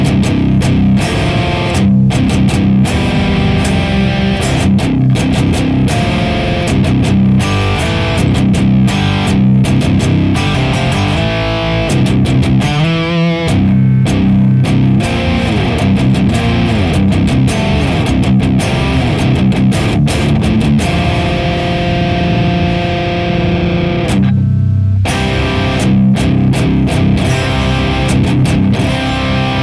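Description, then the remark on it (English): Heavily distorted electric guitar played through a Boss IR200 pedal plays loud, chugging palm-muted riffs with ringing chords and brief pauses, thick and saturated throughout, with no voices over it. “When we listen to the Boss IR200, it sounds as such.”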